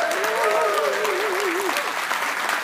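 Steady, loud applause from a crowd for a radio show guest on the campus of the University of Tennessee, Knoxville, fills the whole clip, with a wavering vocal cheer riding over the clapping during the first half.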